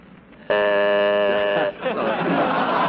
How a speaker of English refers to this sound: Hurry up, for Beulah the buzzer blows.